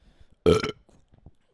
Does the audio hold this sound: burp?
yes